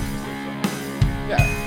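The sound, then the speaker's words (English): Bells jingle in three bright, evenly spaced shakes over a low musical background, each with a shimmering high ring, the last leaving a thin sustained tone, in the first verse of a self-made Christmas song. No one speaks. “I better put some bells here so you know it's a Christmas song.”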